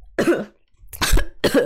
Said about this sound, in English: I was coughing, not sneezing. I'm putting a blessing on you regardless.